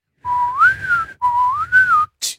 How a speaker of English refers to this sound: You can't whistle? No. Oh. I can only whistle one pitch.